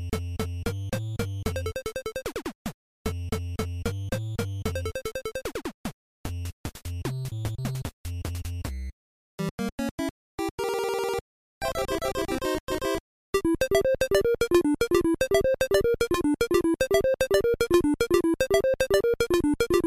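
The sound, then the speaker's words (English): Bright 8-bit chiptune music from the NES game Balloon Fight, jumping between short buzzy square-wave phrases with abrupt cuts and brief silences, then settling into a steady, bouncy repeating melody. No voices. “Here's a little piece of Balloon Fight to get your brain in order.”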